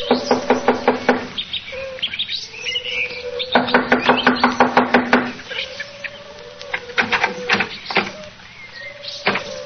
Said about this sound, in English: Here we are. I'll knock on the door.